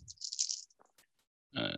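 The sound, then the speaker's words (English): Four dice rattle in a hand or cup for a tech roll, then tumble out with a few sharp, scattered clacks before a second loud burst of rattling at the end. No one speaks. “Yeah, I'll do a tech roll. So, I've got 4 dice and 8 pluses.”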